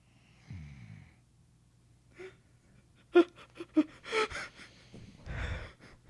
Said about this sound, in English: Literally asleep. Literally snoring into the microphone.